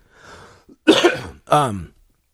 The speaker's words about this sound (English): Dude, I already apologized, but I'm apologizing again. I'm gonna be coughing a lot. I'm sorry.